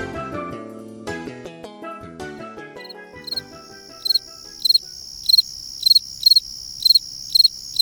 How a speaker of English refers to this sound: We leave you this week with a distinctive sound of the season, the fall field cricket, Grillus pennsylvanicus. Fall field crickets hatch in the spring and continue to sing till the frost kills them.